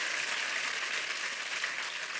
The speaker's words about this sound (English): Everybody clap your hands and praise the Lord.